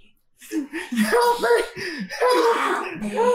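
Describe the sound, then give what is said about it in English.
A person imitates the panting of Scraps with a rapid, rhythmic run of breathy, voiced huffs, fairly loud, continuing steadily for a few seconds after a brief silent start. “Scraps is just panting the pants.”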